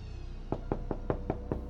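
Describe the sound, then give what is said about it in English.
A quick series of six firm knocks on the door of a butcher's shop in Cleveland on Sunday, January 26, 1936, evenly spaced and rapping out a steady rhythm over a low background hum. “On Sunday, January 26, 1936, 4 months after the first 2 bodies were found, Cleveland butcher Charles Page was working in his shop when he heard a knock at the door.”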